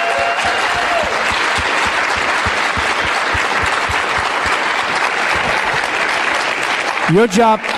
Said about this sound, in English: But can we all just give a round of applause for the men and women that serve in our police departments?